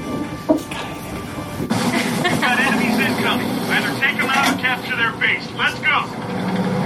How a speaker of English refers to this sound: All the tank sounds were actual recordings of tanks that we made in collaboration with the Minsk PC team.